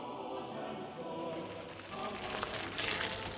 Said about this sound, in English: I was in the middle of making some supper. You can hear the sauce bubbling in the frying pan.